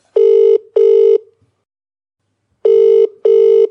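An outgoing-call ringback tone sounds twice: each ring is a pair of short, steady buzzing bursts, with a second of silence between the pairs. The tone is loud and clear, and no one speaks.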